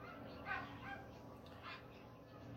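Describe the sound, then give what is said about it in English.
A dog barks a few times, short irregular yelps rising above a steady low background rumble, with no voices in between. “But far from that, though, this has a dog barking, aircraft gonna pass by, and somebody's brakes need to be fixed in front of the bus.”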